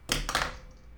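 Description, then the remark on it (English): A pencil, dropped as a 'drop the mic' gesture, falls onto a hard surface, giving a sharp clatter followed by a quick second bounce, then a brief faint rattle as it settles. No one speaks. “I assume that was your phone. That's great. Touche, sir. Touche. No, it was a pencil, but still.”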